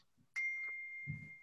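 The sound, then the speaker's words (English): A single bright message notification chime from a group chat rings out with a sharp attack, then holds a clear sustained tone that slowly fades, with a soft low thump underneath near the end. “Are all those injuries, by the way, those notifications?”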